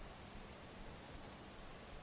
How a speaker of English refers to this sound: Or there's a hum, maybe the sound of the heater.